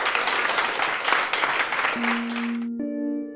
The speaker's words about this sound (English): A big round of applause. Thank you.